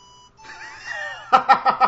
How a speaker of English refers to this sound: which is the whistle song that is the best song on the Deadly Premonition soundtrack